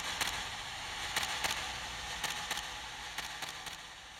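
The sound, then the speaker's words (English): Camera shutter clicks sound in quick pairs, about eight sharp snaps spread across a few seconds over a steady, soft background hiss. No one speaks. “And he sent the very appropriate sound of camera clicks.”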